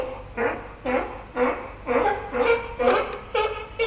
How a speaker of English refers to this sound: It's the alarm call, yeah? The bark. That's a sneeze. They're alarmed. They don't know what's going on.